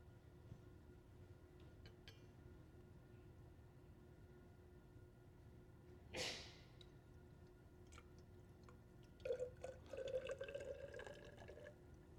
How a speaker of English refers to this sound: But there's this funny snake-like tube that comes from the bottom of this, up, around, down, and back inside toward the flask. So watch what happens when I pour some liquid in here.